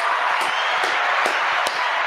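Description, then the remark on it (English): Steady, loud clapping from many hands welcoming former Charger, Raven and Los Angeles Ram Eric Weddle, a dense wash of claps with a few sharper ones popping out now and then, continuing evenly for about two seconds with no talking. “Clap it up, E-Dub.”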